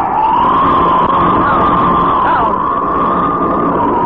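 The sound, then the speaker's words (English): A loud, steady motorboat engine drones continuously, its buzzing whine holding nearly constant with slight shifts in pitch, as the boat tries to reach a man sinking in the water to pick him up. “And there's the boat. They're trying to get to him.”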